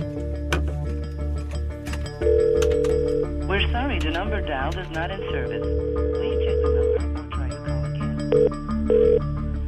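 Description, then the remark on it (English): A telephone line rings out with steady electronic tones in repeated bursts, clear, with a brief warbling, voice-like passage partway through; an outgoing call placed by a CBC News reporter. “Here we go, next call.”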